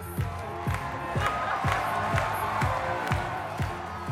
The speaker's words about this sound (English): That cheering you hear is for Elon Musk. He's dancing on stage at the opening of Tesla's Chinese factory, Giga Shanghai, in 2020.